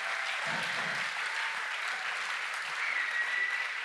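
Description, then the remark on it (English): A church audience applauds and cheers to heaven after a prayer in a dense, steady wash of clapping that holds an even loudness throughout, with a brief high whistle-like cry rising near the end. “Let's give a big cheer to heaven.”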